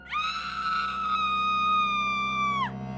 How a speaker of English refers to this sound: She forcefully grabbed her head as if to keep it from falling off as the rest of her body burst into violent spasms and quakes. She let out a terrible scream.